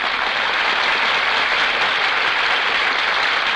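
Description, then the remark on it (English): Steady, dense applause from a large audience as performers walk from the wings onto the stage, loud and sustained without pause, a broad wash of many hands clapping at once with no voices over it. “That applause, ladies and gentlemen, is for our stars who have just walked from the wings onto the stage.”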